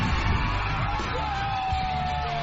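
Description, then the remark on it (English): A big, completely full stadium crowd at a Friday night football game under the lights roars in a steady, dense wash of noise, with scattered yells and whoops rising out of the din and a thin whistle-like tone drifting through. “We would come out here, the lights would be on, the whole stadium would just be completely full and the crowd would be roaring, and it was just a very euphoric, unbelievable high.”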